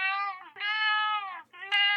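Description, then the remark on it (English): A cat named Kipper meows loudly, three drawn-out, whiny meows in quick succession with barely a pause between them, and no one talking. “So, Kipper, is there a common myth about cats that you want to debunk right here, right now?”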